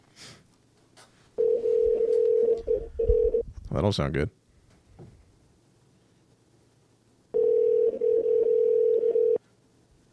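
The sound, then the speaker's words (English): A phone's ringback tone purrs on an outgoing call: a steady electronic ring for about two seconds, a pause, then another ring. A person mutters briefly between the rings. “Hold on. It's ringing.”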